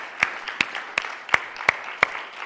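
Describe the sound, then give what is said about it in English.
An audience gives the Lord a hand clap in a morning service, with six sharp, loud claps landing on an even steady beat over a soft wash of scattered crowd clapping. “Can you give the Lord a great hand clap this morning because He's a good God?”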